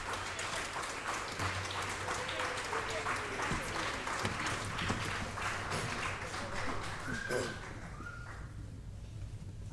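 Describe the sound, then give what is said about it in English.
A standing church audience claps steadily for several seconds for their Sunday school kids, with scattered cheers and voices mixed in, a dense, continuous wash of applause that tapers off toward the end. “Rise to your feet and give a big round of applause for our Sunday school kids.”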